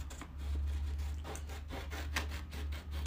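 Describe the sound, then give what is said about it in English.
Paper being cut, two cuts for every button, in a run of dry, rasping strokes, several short scratchy bursts in uneven rhythm over a steady low hum, with no voices. “I gotta cut the paper two times for every button.”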